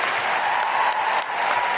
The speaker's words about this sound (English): Can I have a huge, huge, huge round of applause for …? …?